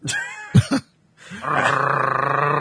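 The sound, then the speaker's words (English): A squeezed dog toy stuck in the Phantom lets out a loud, rasping growl-like noise that holds steady with a fast fluttering pulse, preceded by a few short, gruff bursts and a brief pause. “Sounds like an actual dog just trying to bite the toy.”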